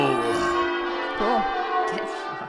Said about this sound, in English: It sounds like really, really loud, like church bells.